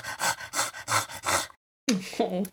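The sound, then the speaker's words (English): A person imitates a small dog snoring as it sleeps in an awkward position in someone's arms, with about five quick, rhythmic, breathy snorts, then a short silence and a brief bit of talking. “he's asleep, but he's in, like, the most uncomfortable position to hold a dog, like, limbs okay. everywhere, doing that little, like, small dog snore that's like...”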